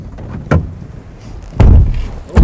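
A truck door clunks shut with a heavy, low thud, preceded by a sharp latch click and followed by another solid knock, as someone gets out of the truck on windswept open hill land, over a quiet rumbling background with no talking.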